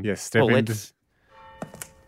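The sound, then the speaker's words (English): A person speaks briefly, then after a pause a few sharp, irregular footsteps of one person going through a big door tap out over a faint, steady hum. “Is this your footsteps or are we all on your back? Because there is only one pair of footsteps.”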